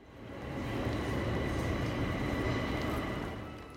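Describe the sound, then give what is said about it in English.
Railway station ambience at Waterloo station, with very few trains running as an RMT Christmas strike begins: a steady low rumble of a train and rolling carriages fills the space, fading in at the start and easing away at the end, with no one speaking. “Waterloo earlier, a station with very few trains to be heard as the RMT's Christmas strike begins.”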